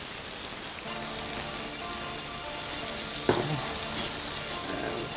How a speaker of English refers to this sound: this is arborio rice. This is what we use for risotto. Don't use regular rice. This is nice and starchy. And I like to toast it a little first, just with the olive oil by itself.